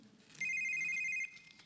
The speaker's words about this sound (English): Whose phone is that? Well, will you just answer it? Your ringer shouldn't be on at the table anyway.